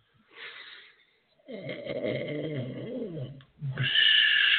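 A drawn-out yawn: a short breathy intake, then a long groaning voiced stretch that wavers in pitch, ending in a hissy, breathy release.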